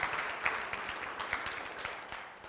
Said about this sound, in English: I hope we can applaud a little bit bigger than that for Jesus.